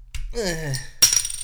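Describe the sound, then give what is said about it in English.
A drawn-out vocal sound gives way to a single bright clink of glasses touching in a toast, followed by a thin, high ringing tone that lingers and fades. “Ready? Clink. That was satisfying.”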